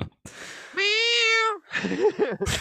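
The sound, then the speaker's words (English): A cat, the one that watches Bruce Lee and Chuck Norris fight, lets out a loud, drawn-out meow, followed by a burst of rougher, wavering yowling sounds before it cuts off. “Get the fuck out of here. Cat.”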